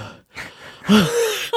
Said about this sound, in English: My breathing has just been like. Oh, labored breathing.